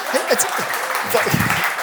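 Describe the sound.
An audience claps steadily, a dense wash of many hands at moderate loudness, with a few voices calling out over the applause.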